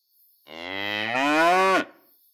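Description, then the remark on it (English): A single long, loud cow moo, rising slightly in pitch before cutting off abruptly, with no talking around it. “The parson followed the maid inside, not trusting her in her state, and was led to the cow.”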